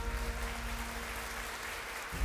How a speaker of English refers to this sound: At the end of the eulogy, the crowd erupted with applause.